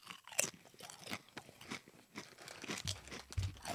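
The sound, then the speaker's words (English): Crunching of a jalapeno tortilla chip being chewed, a series of crisp, irregular crackling bursts repeating for several seconds with no one talking. “Look at that crunch. That's a good chip.”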